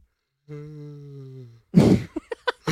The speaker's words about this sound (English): Yawned and rubbed his eyes at that question. He's being sleepy.